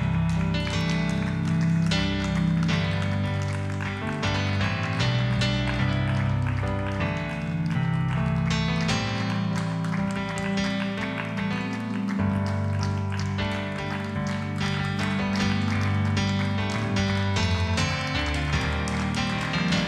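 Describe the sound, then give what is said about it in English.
Steady rhythmic hand clapping from a crowd praising God, over loud, continuous music with sustained low tones, the claps landing in a quick, even beat throughout. “That you would clap your hands and praise God in this moment.”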